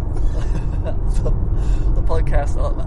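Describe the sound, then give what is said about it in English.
Steady, loud low rumble of road and engine noise inside a moving car, continuous for the whole stretch, with a few brief voice fragments rising faintly above it. “We've never actually done this in a car before, driving.”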